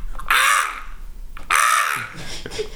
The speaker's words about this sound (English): A few minutes of bird. Let's do some bird calls, guys.